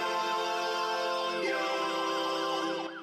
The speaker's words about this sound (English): Can't you hear that? The police sirens?